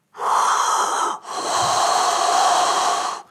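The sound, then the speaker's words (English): A person loudly imitates snoring with their voice: two long, rasping breaths, the first about a second, the second longer after a brief catch, harsh with no other talk. “And it sounds like that same snoring sound, but much louder, coming from the south.”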